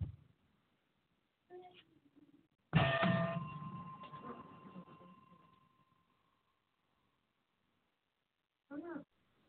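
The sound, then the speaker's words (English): A small bell is struck once, fairly loud, its bright tone ringing out and slowly fading over several seconds, with brief bits of voice before and after. “Got a bell for you.”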